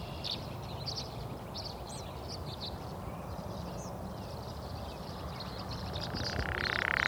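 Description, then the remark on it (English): Tree swallows twitter in quick, high chirps scattered throughout, faint over a steady rumbling wash of background noise that swells slightly toward the end. About 30 tree swallows wheel in the air over a lake with nest boxes along the shore, squabbling over a large white downy feather while building their nests. “Out on the lake, the tree swallows are building their nests as well.”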